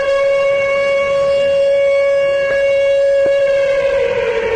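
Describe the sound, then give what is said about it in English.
A loud siren holds a steady, piercing tone for several seconds without rising or falling, with a couple of faint clicks partway through and no voices. “no, this is not it. But this is, there will be the next siren shout out.”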